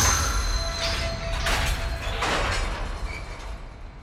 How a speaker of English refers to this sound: Then, without warning, the train screeches to a halt so rapidly that several of the trucks come off their tracks.